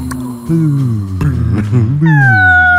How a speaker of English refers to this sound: Them dogs start barking at each other.